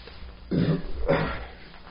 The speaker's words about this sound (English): I feel like I'm going to burp.